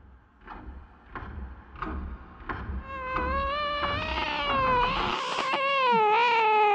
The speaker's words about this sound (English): A cat's violent scream awoke Edna. It was night, and her room was dark.